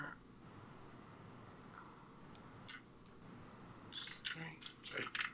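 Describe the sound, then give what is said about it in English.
A handful of damage dice clatters across a tabletop near the end as a player rolls for damage, a quick burst of overlapping clicks and rattles, fairly loud, after a stretch of quiet room hum. “That was a lot of dice.”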